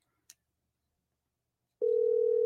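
A soft click, a brief silence, then a loud, steady telephone dial tone on an outgoing phone call begins and holds without a break until the end. No one speaks.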